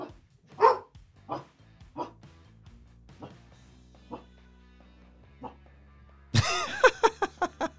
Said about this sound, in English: Everybody say hi to Jake's dogs. Yeah. They must have heard something.